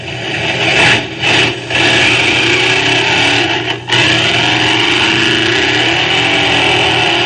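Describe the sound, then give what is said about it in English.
A 1957 Ford race car, number 91, roars away from the starting line on a qualifying run in a storm of dust, its engine loud and continuous with a rough, gritty edge, briefly dipping twice early on before holding a steady, full-throttle drone. “He leaves the starting line in a veritable storm of dust and piles the automobile into the first turn.”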